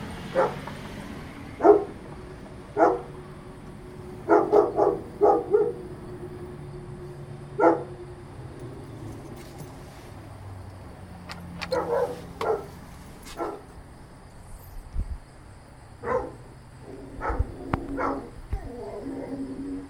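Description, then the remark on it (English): Deep, heavy barking from two large dogs, coming in short bursts and clustered volleys over the whole stretch, with some echo, with a few yips and whines mixed in. “big dog. Two big dogs.”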